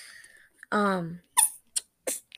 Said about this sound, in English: By the way, if you hear any weird noises like a fart, that's because I have a rubber duck. Rubber duck. Air pressure in the duck on my palm of the hand. Palm of my hand. That's what it sounds like.